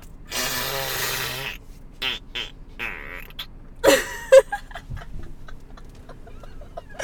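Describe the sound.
A person blows a wet, buzzing raspberry with their lips, imitating the long fart of someone sleeping at night, followed by a few shorter sputtering bursts. It's fairly loud, with no other sounds around it.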